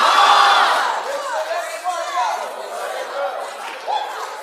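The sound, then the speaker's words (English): A large crowd erupts in loud, sustained shouting and cheering, many overlapping voices with rising whoops and cries that swell and ebb over several seconds. “Somebody scream, God.”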